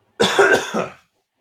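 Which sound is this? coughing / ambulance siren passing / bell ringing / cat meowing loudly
coughing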